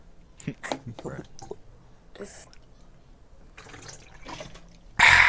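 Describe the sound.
Soft whispery voices and hushed noises lead up to a sudden loud rush of water pouring, which begins abruptly near the end and continues strongly.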